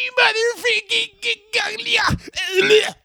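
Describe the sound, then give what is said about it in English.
A man's voice imitates Jim Cornette's anguished screaming and wailing: a few loud, strained, wordless cries, wavering in pitch with brief gaps between bursts. “70 minutes of it will just Jim Cornette just screaming bloody... Gaga! There will be no words. It would just be...”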